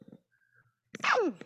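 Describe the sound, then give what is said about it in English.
After a quiet stretch, a single loud sneeze bursts out: a sudden noisy blast sliding into a voiced cry that drops sharply in pitch. A few faint low sounds come before it. “Excuse me. Bless you.”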